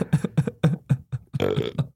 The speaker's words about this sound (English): We can't end on a burp, man. Oh, sorry.